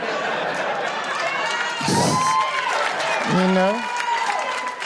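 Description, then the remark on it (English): An audience claps steadily throughout, a dense crackle of many hands, with crowd voices and a couple of short shouts or whoops rising over the applause. “That's nothing to clap at.”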